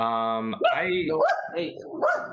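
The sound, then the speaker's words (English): A dog lets out a short run of loud, yelping barks and whiny vocal sounds, following a brief steady humming tone at the start. “We're a pro dog podcast.”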